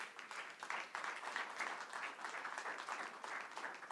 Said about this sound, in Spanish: Dale un aplauso al Señor, pues.